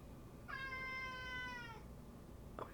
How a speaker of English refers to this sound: Meow, come meow into the mic.